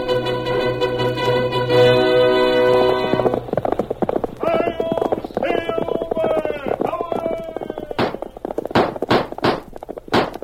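Brassy music opens The Lone Ranger radio show, then the horse Silver's hoofbeats gallop in a rapid, driving rhythm, loud, with several sharp, heavier hits toward the end.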